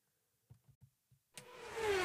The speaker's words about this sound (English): And we are back, and that was Jeff Sharkey in car number 66, just whizzing by us, finishing off the race season at Evans Mills.